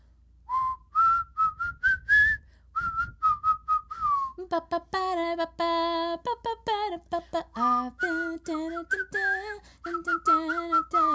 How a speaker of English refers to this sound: We're going to whistle. We're going to whistle a tune.